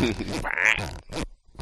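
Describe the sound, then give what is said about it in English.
A headset microphone is lifted behind the wearer's head and then put back in front of the face, making a few quick rubbing, scraping bursts with a low, blubbery, fart-like texture, separated by brief pauses. “That is, for anyone who's wondering, that is my headset 3D farts microphone that is being lifted behind my head so I can yell in 3D and then put back in 3D and then put back in front of my face so I can talk into it.”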